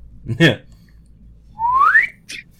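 A quick vocalized grunt, then a thin, breathy whistle that slides upward for about half a second before breaking off into a short puff of air, unsteady, as someone who can't whistle tries and fails.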